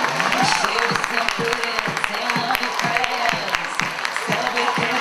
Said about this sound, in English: Keep it up, ladies and gentlemen. They all work very hard to bring you some great fashion. A round of applause for all the designers and for all the accessory designers as well.